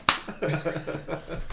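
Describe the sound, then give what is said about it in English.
A sharp slap rings out once, then a voice makes a run of wobbly, floppy vocal noises imitating loose tusks smacking together. “Yeah, while her flaccid tusks were slapping together.”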